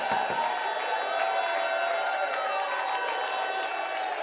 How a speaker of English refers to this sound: You feel like shouting, go ahead and shout. You feel like clapping your hands, go ahead and clap.